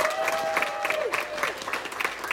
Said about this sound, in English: Please, can I get another round of applause for all of these amazing graduates?